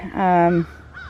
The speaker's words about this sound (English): You can hear the crows. I like the crows this time of year.